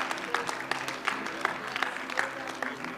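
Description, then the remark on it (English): A church audience claps steadily, a dense layer of applause with sharper, regular beats roughly every third of a second, sustained at an even, moderate loudness throughout. “And I know some of you clapping may not be here if we do keep it open.”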